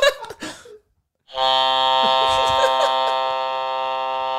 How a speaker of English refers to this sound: I was waiting to press this buzzer all week. I hadn't pressed it yet, right? It was sitting on my desk.